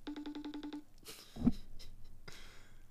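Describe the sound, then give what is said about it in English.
An outgoing FaceTime video call's electronic ringing tone pulses rapidly about eight times, then stops unanswered, followed by a loud low thump and some scattered clattering and rustling noises. “Answer the phone.”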